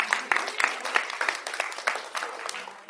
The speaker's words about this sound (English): Yeah, we should clap. That's a good idea.